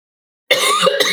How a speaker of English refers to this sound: Excuse me. Same. I think I have a talking cough. You're getting it too. It's contagious over the computer.